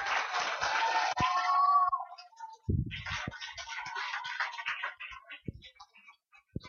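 A crowd applauds in a dense, noisy wash of clapping that fades briefly, then swells again before tapering off, with a few sharp isolated claps and a short whistle-like tone early on.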